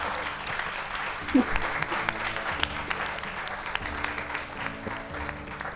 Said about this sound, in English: Well, a round of applause. I think it's been fantastic.